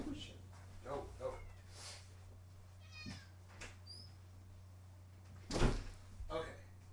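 A cat in the room meows several times in a row, fairly loud, over a steady low hum, with a brief knock or bump partway through.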